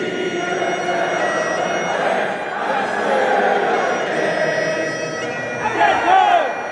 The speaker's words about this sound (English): I visited Glasgow and went to Hampden Park to see Scotland beat Ukraine 3-0 in an international match. The crowd singing Flower of Scotland before kickoff was one of those spine-tingling moments that big football and rugby internationals throw up.